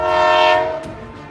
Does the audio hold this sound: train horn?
yes